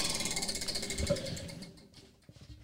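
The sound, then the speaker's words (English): A rigged prize wheel, given a hard spin, turns with a rapid stream of mechanical clicks, the ticking steady at first, then thinning and slowing as the wheel loses speed and stops. “We kind of doctored the wheel here. All right, we kind of rigged it. So are we ready? Yeah, go ahead. Give it a hard spin.”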